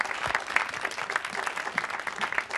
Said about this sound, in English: Guys, round of applause one more time for Matt Whitecross, Andy Serkis, and Paul Vera. Thank you guys so much.